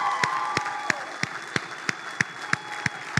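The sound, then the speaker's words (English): An audience, standing during a Sunday morning worship service, claps in unison at a steady, brisk beat, about ten sharp claps in three seconds, over a continuous wash of cheering and shouting voices giving God a shout of praise. “So when I count to three, let's stand to our feet all across this room and let's clap and let's give God a shout of praise this morning.”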